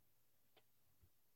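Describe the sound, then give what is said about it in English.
A clock ticks softly a few times against a quiet background, the last tick sharper and louder than the faint ones before it. No one speaks. “Clock on the wall”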